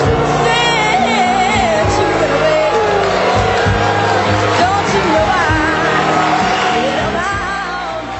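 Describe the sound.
A theater audience boos loudly and continuously, a dense wall of many overlapping voices with scattered shouts and yells rising above the din for the whole stretch.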